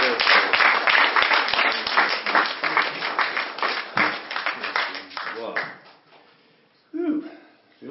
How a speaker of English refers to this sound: Can we give him just a hand clap of praise for that? Thank you, Lord.